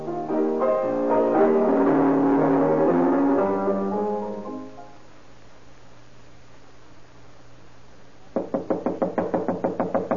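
A sustained, humming tonal passage fades into near silence. Then a rapid, insistent series of about a dozen loud, evenly spaced knocks pounds on a door as someone demands it be opened.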